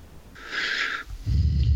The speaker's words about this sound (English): Was that heavy breathing deep in thought, or was that just that was a very, very enthusiastic aggressors.